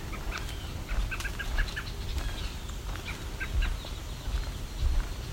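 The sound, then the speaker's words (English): Scattered short, sharp bird calls and chips from a brown thrasher ring out at irregular intervals in a white pine plantation, over a steady low outdoor rumble like wind. “Their behavior is consistent with brown thrasher, I feel, though.”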